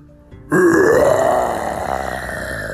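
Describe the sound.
A person imitates a dinosaur roar: one long, loud, gravelly growl that starts abruptly, rises slightly in pitch, then holds rough and sustained for about two seconds.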